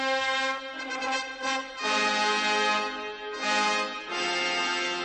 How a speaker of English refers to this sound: Ah, the men with trumpets.